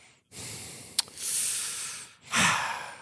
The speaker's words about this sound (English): Secondly, the very end, after the credits, what do you hear but Michael Myers breathing underneath the mask?